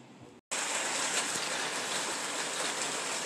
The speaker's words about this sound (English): This is just the sound of the Arizona rain. It's so therapeutic. We hardly ever get some raindrops, so this is fresh, clean, crisp, cool air.